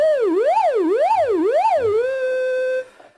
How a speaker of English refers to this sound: An oscillator produces a steady pitch sound. And then this synthesizer, we can control the oscillator sound from either the keyboard, from a pitch wheel, or automatically through modulation.